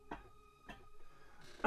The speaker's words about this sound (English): I swallowed something the wrong way. Can you stop coughing in my face? Sorry. He's not actually, by the way. He's coughing into his elbow. And he's ages away from me.